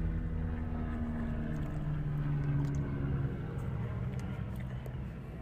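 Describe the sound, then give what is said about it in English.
A helicopter engine drones steadily and loudly throughout, a dense low rumble with a faint whirring texture and no voices over it. “Can we get that helicopter in here?”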